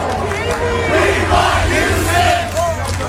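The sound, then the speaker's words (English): A large baseball stadium crowd of Philadelphia Phillies fans chants together in a loud, rhythmic roar, voices blending into a sustained, echoing wall of sound with rising and falling swells. “That's Phillies fans.”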